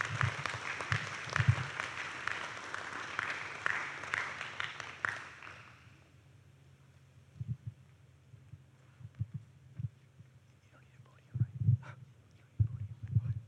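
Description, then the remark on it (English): A church audience at Harvest claps in praise to the Lord, a dense, steady burst of applause for about five seconds, welcoming someone who is sharing his testimony, before it quickly dies away, leaving scattered low thumps and quiet. “And so with that, let's give a praise, a clap to the Lord as we welcome him as he shares his testimony.”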